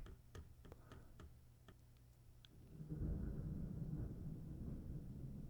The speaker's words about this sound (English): Holy. Got some thunder here. I don't know if you could hear that or not, but that was a little thunder. A little morning thunderstorm.